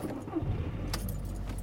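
Car keys jangle in a few quick, bright metallic rattles inside a car, over a steady low rumble like an idling car interior. No one speaks.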